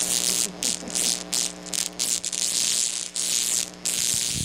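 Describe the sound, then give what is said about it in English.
Steady electrical crackling and buzzing from a violet wand, a harsh high-pitched hiss over a low hum, broken by brief gaps where the sparking cuts out and restarts. “Well, that crackling that you just heard is a violet wand.”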